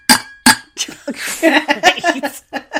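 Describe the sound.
Two sharp metallic clinks from a water bottle lid, bright and loud, followed by a quick flurry of lighter taps and rattles mixed with voices talking and laughing.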